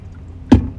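Someone drinking Liquid Death canned water from a can: two quick gulping sounds about a third of a second apart, over a low steady background hum, with no talking.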